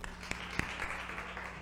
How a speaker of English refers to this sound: Hallelujah. Let's clap up.